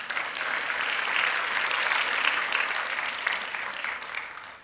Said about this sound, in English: Don't you think God deserves a clap offering?